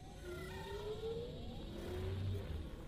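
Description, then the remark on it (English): A spaceship careens out of control through a forest, its engine roaring and whining with sweeping, shifting pitch over a low rumble, loud and continuous for a few seconds with no voices. “And this is another really great bit that Paul did here, is their ship is sort of careening out of control. Uh-huh. Through the forest, as you hear it come. There it is.”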